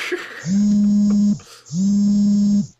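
A mobile phone buzzes twice, each long, steady low-pitched vibration lasting nearly a second, with a brief pause between them and no voices.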